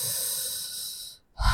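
A long, deep, airy breath drawn by a person sitting still in prayer, then a short silent pause before the next breath begins. No one speaks.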